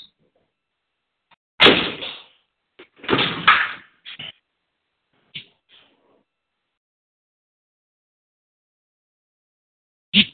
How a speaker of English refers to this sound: All right. I'll shut the doors down there. I'll be right back.